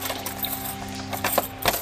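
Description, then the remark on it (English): A few bright metallic clinks and rattles of keys jangling sound over a steady low electrical hum, with the jingling bunched near the end. “Where's those keys?”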